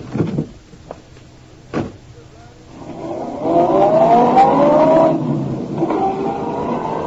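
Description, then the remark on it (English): A couple of sharp thuds as Dawson climbs back into his car and shuts the door, then the engine revs up with a rising whine as the car drives off, steady, with no voices. “I watched, perplexed, as Dawson climbed back into his car and drove off.”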